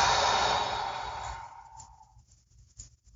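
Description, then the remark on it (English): A long breathy exhale during a breathing exercise, loud at first and gradually fading out over about two seconds, followed by near-silence with faint soft noises. “And exhale out.”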